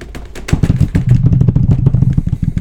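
A loud, rapid drum roll of fast, even strokes blurring into a continuous low rumble, building steadily for a couple of seconds with no voices.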